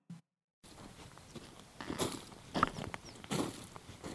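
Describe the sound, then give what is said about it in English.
Footsteps trudging up the steep side of Hawthorn Crater on a battlefield in northern France, on a sunny but sometimes windy day: a few slow, uneven crunching steps over rough ground, growing louder, over a steady low background hiss, with no one talking. “We're walking up Hawthorn Crater. It's quite steep, this”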